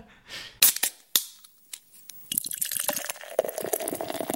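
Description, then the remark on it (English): A beer can cracks open with a sharp metallic pop and hiss, followed by a couple of clicks, then a steady fizzing pour of beer into a glass, clear with no talking. “Well, you're going to hear the sound of a can. And yeah, opening and pouring, and then we'll be back.”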